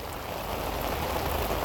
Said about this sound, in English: So this is something that I recorded last summer. It was the rainy season in Nigeria. I was driving through the city during a very heavy downpour.